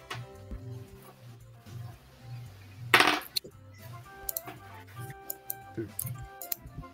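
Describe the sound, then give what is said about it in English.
Dice clatter across a table in a short, bright burst as players roll for a mind check, followed by a few scattered light clicks, all over a soft, steady musical background. “In fact, if you all roll for me a quick mind check.”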